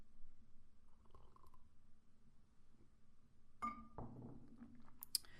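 food or drink, sipping coffee

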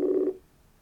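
signal or alarm, phone call ringing out

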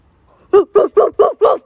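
animal, dogs barking

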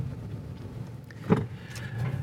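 vehicle, car interior

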